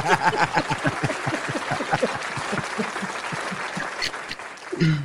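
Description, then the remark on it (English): An audience applauds with dense, steady clapping that stays loud throughout, thinning slightly toward the end, when a brief whoop or shout rises over the claps. “Our applause? Come on. We gave you one earlier.”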